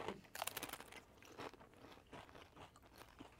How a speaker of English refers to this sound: And this is the most mild one that we got. Yeah, right? Yeah. This is the least spicy of the bunch. Cheers. Cheers. Okay. I'm sorry for chewing. Not really.